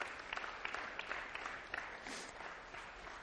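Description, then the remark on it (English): An audience applauds steadily, a dense wash of many hands clapping at moderate volume, continuing without pause, welcoming a counselor coming up to speak. “Oh, you can keep clapping.”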